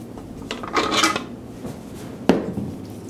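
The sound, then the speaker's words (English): After mixing bread dough, a stand mixer's bowl is lowered and its paddle disconnected: a burst of metallic rattling and clinking, then a single sharp metal click, with no voices. “Now we're going to lower this puppy and then disconnect the paddle.”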